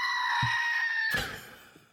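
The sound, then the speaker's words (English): A single drawn-out, human-like scream from a goat toy standing on a little pedestal, pushed down to make it sound, loud, holding a shrill harmonic wail for about a second before cutting off with a rough burst. “So that aside, it's actually a screaming goat.”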